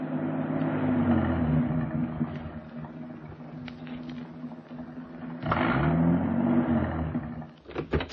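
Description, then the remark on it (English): A car engine labors steadily as the vehicle climbs up to the Hollywood Hills as it gets dark, a continuous low rumble with a brief surge in revs partway through, fairly loud, with no voices. “It was getting dark now, and the car was climbing.”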